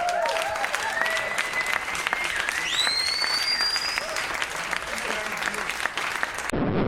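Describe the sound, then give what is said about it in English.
A crowd applauds steadily for several seconds, dense clapping mixed with a few sharp whistles rising over the noise, then the applause cuts off abruptly. “I feel like you need an applause there, by the way.”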